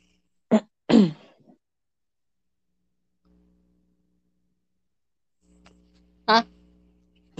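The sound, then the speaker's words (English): A couple of short, stifled burp sounds come in quick succession, then a quiet pause over a low hum before one more brief gulping burst. No one speaks. “I had a burp, so I was trying to.”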